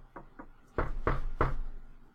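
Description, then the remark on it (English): Knuckles rap on wood five times for luck, two light taps followed by three louder, hollow knocks in a quick, uneven rhythm, with no talking. “Yeah, so hopefully things go smoothly, knock on wood.”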